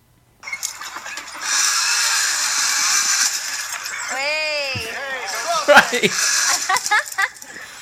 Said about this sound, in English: Right, hang on, I'm not sure just listen to the audio of it. It might turn out shit, but you can just hear the zip line and there's no element of skill involved.